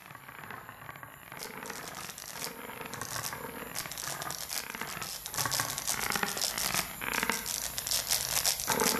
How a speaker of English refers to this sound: You're listening to the audio from Jungin's multiplayer VR performance project called Sound of Light. This uses the Oculus Quest headset's hand-tracking feature to turn players' gestures into a range of sounds.